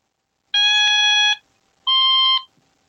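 An Otamatone, which changes pitch as you go up its fret, plays two buzzy, reedy electronic notes: a sustained tone lasting nearly a second, a brief pause, then a shorter note pitched slightly higher. No one speaks.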